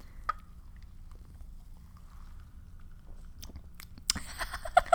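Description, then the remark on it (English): Someone takes a sip of a watermelon-flavored Trader Joe's drink, a quiet stretch followed by a few soft, wet mouth clicks and slurping sounds near the end, with no talking. “So I'm going to take a sip now.”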